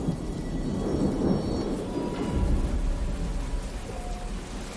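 thunderstorm with rain

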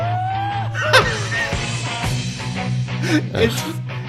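played song recording

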